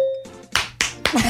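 Three sharp hand claps celebrating a correct trivia answer land in an even rhythm, each a loud, crisp burst, after a short steady tone. A voice briefly joins over the last clap.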